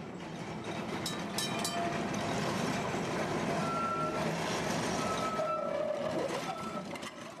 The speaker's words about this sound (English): A slaughterhouse at the rear of the house, and trams rattling by every few minutes over the cobbled street at the front.